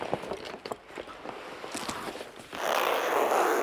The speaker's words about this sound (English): Next, put each arm, one by one, into the sleeves of the attached space jacket and zip up the suit.